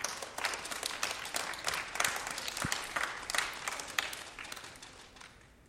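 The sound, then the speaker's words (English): A crowd applauds steadily for third- through eighth-grade students who made the A and B honor roll, with many overlapping hand claps, a dense crackling patter that holds fairly even, then thins and fades toward the end. “congratulations to these third through eighth graders that made the A and B honor roll. Give them a round of applause.”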